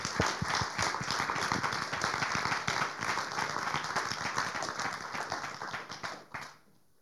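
A crowd bursts into sustained applause, many hands clapping in a dense, steady patter that holds loud for about six seconds before tapering off quickly.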